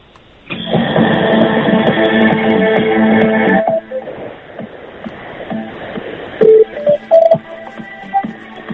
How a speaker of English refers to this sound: It's the News 24 kind of hold music. Is there any chance of getting a bit louder? Because it's a bit quiet. It's not really working.